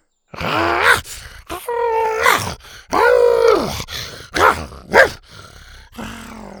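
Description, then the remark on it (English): Three horned baby dinosaurs roar at warriors holding spears: several shrill, growly cries overlapping in quick bursts, loud, with brief pauses between each outburst. “Her triplets stood in front of her and roared at the warriors, jabbing their horns at the spears.”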